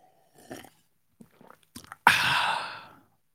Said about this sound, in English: Sip of the day. That was official. It's sip of the day. Sip of the day.